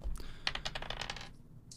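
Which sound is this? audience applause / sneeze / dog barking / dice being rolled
dice being rolled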